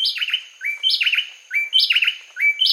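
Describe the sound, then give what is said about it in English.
A pair of bay wrens, hidden in the underbrush, sing a brisk, tightly interlocking duet just before sunrise on a winter morning in Costa Rica, alternating bright whistled phrases and sweeping notes in a rapid repeating pattern, clear with no talking. “On a winter morning in Costa Rica, a pair of bay wrens sings a brisk duet just before sunrise.”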